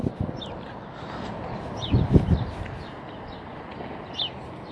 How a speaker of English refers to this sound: There's like a little bird just hanging out, and I want to take a picture of him. But I know that once I get ready to take a picture, he'll probably fly away.